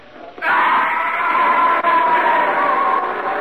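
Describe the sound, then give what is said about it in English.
A man lets out a loud, sustained yell that bursts in suddenly and holds for about three seconds, close and strained, with no other voices around it. “was bringing up the rear when I heard him yell.”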